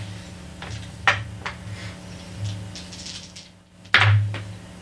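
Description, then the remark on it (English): Dice rattle in short bursts of sharp clicking, one around the first second and a louder cluster near the end, over a low steady background hum. “Mind me, I'm just rattling dice.”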